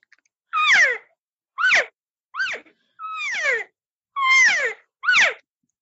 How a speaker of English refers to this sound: those are mews and chirps. That's everyday communication. That's them just saying, hey, everything's all right. I'm right here. Yep, I'm right here, as they're kind of moving.